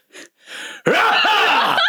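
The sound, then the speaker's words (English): A voice imitates a father's loud, startling sneeze: two short breathy intakes, then an abrupt explosive outburst that stays loud and strained for about a second. “And then my dad would sneeze, and so... They'd have to peel you up. It'd be like...”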